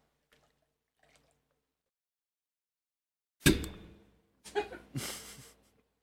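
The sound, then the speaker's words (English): Liquid splashes into a glass after a few seconds of near silence, coming in a couple of short, sloshing bursts as the glass is swirled to rinse it out. “Oh, wait, should I pour something in? Yeah, yeah. Rinse it out.”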